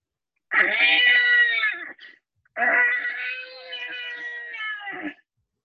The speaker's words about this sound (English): You can see a small light inside, and as you approach, you hear the caterwauling of an extremely unhappy infant.